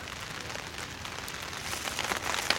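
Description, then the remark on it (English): Steady rain from a storm patters at a camp with tents pitched on a patch of grass, a dense, continuous hiss of fine drops that swells slightly louder toward the end, with no voices present. “Looks like the rain did not hold off. Rain is coming down.”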